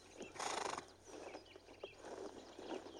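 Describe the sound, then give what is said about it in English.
Horse hooves clip-clop in an uneven rhythm, with a loud burst of horse noise near the start and no one talking. “We have other horses, Highness.”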